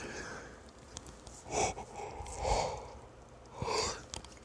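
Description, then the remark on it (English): A person yawns, with three drawn-out, breathy bursts spaced a second or so apart, moderately loud, with no talking around them. “Boy, oh boy, I tell you, the yawns are coming in left and right.”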